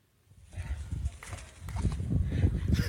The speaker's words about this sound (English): So you have all the sheep that are standing around watching, and then you have this one sheep that's just kind of doing circles in a tire swing. Maybe it's fun.